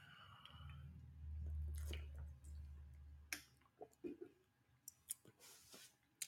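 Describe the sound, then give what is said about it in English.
Quiet sips of water with wet mouth sounds, a low gulping swallow, then a series of small clicks and smacks of the lips and tongue, as a person drinks water for a dry throat after 21 minutes of talking. “21 minutes of straight talking causes you to have dry throat. Good thing I have some water.”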